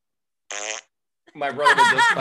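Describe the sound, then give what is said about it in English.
A person blows a short, buzzy raspberry imitating a fart, fairly loud, followed after a brief pause by a longer stretch of animated voice. “My brother would just fucking fart, and I would be so mad.”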